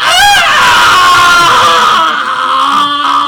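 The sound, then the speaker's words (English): A loud, sustained scream rings out, high and piercing with a wavering pitch, holding for about three seconds with no other voices. “You grab it, and all of a sudden something grabs your leg, and you hear a scream.”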